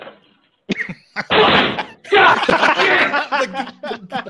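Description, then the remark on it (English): A door is kicked in: a couple of sharp thuds, then a loud crash of splintering and banging, with muffled voices and what sounds like laughter mixed in. “The door kick is the best.”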